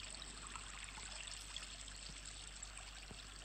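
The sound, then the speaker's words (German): Steady trickling water from a village fountain, a continuous soft splashing wash with no pauses, fairly quiet, with no voices. “Und es ist sogar das Wasser vom Brunnen zu hören.”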